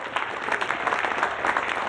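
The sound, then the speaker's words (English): Many people in a neighbourhood clap together for carers in a steady, dense patter of applause that stays fairly even in loudness throughout, with no voices standing out. “Inspired by the clapping reported from other countries, London-based Dutch yoga teacher Anna-Marie Plaz promoted a clap for carers for Thursday, the 26th of March, via a Facebook post, and the event quickly took off nationally.”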